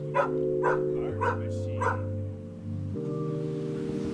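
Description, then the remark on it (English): Dogs bark four times in quick succession over about two seconds, over a steady low tonal hum that continues after the barking stops. They are dogs of the Positive Mission program, in their living and training area in Building 18 at Sea Yard, part of a housing unit converted for 9 to 12 dogs. “That's where Positive Mission had turned part of a housing unit into a living and training area for the 9 to 12 dogs who are part of the program.”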